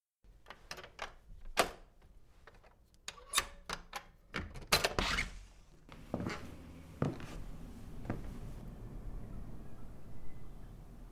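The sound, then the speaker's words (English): A key rattles and clicks in the lock of a guest room door with a series of sharp metallic taps, then the heavy door creaks and thuds open, followed by a low steady hiss. “If you'll hold the lamp, sir, while I unlock the door.”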